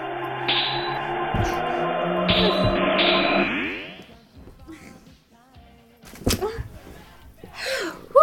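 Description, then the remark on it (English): A loud, steady crackling static hum with buzzing tones, a time-travel sound effect, holds for about four seconds, then warbles and fades away, followed by a few brief breathy vocal sounds like gasps. “Time travel gives you static.”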